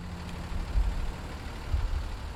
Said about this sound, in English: I'm on a bus heading from Montreal an hour south to the Benoit family farm, just outside the village of Saint-Armand.